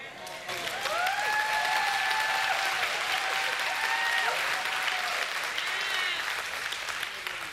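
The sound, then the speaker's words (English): An audience claps steadily and loudly for about seven seconds, a dense, even wash of applause with a few high cheers rising above it, and no one speaking. “And by the way, I'm not sure if anyone's gonna clap for this one, but since he's a wise creator, I think he knows what he's doing when he signs a person's gender.”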